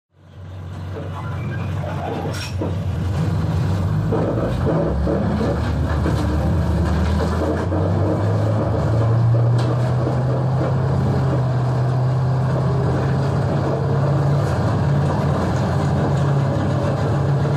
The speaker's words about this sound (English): do you remember that long bus ride to school? I can still hear to this day the sound of the bus on the way to school during that long bus ride.